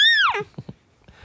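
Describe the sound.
A child's voice gives a single high, drawn-out meow imitating a cat, bright, sliding downward in pitch, followed by a few soft low thumps and murmurs.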